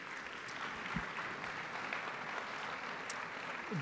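A crowd applauds steadily, a dense wash of many hands clapping at an even, moderate loudness throughout, with a few sharper individual claps standing out.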